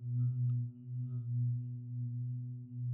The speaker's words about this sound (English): That's definitely not me, but rather the hum of the universe, which on its face may not sound like much, but this marks a major breakthrough for astrophysics.